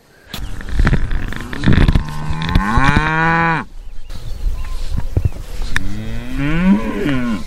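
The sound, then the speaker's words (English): Heifers (young female cows), lined up behind a fence waiting to enter a new patch of grass, moo loudly, one long drawn-out call rising and falling, followed by a second, overlapping lowing call with a quieter herd murmur between them. “Well, all the cows or heifers are lined up almost as if they're about to begin a marathon, and they're all waiting to enter the new patch of grass.”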